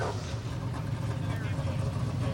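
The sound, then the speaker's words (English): The V8 engine of an Andretti LMP3 race car idles close by in the pit lane with a deep, steady rumble that holds at an even loudness throughout, its throaty low growl filling the whole moment. “Oh, that's got to be a V8.”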